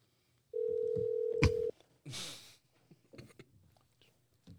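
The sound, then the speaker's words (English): A single steady ringback tone from an outgoing phone call buzzes for about a second, then cuts off with a click as the line picks up, followed by faint rustling and muffled line noise. “So let's go, man. The phone's about to ring.”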